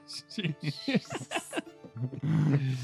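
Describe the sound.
Someone imitates snoring with their voice: a few short, throaty grunting bursts, then a loud, rough, rumbling snore held for the last second or so.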